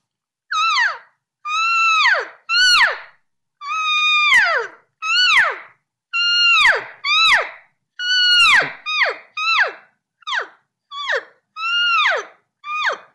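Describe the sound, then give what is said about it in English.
A series of about fourteen pleading cow elk mews, imitated with a call: high, nasal, downward-sliding cries in a steady rhythm, some clipped with sharp clicks, with no one talking. “I just added a little bit of more emotion to the cow talk, you know, just a little bit more pleading is.”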